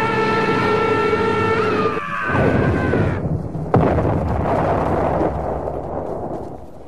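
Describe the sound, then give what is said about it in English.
A plane's whining engine drone with steady tonal harmonics dives in pitch as it heads straight down with its tail controls trimmed, then breaks into a loud, rumbling crash and explosion with a sharp impact burst, followed by fading roaring debris noise as the plane sinks beneath the waves. “Something's trimming the tail controls, forcing us down. We're going to crash.”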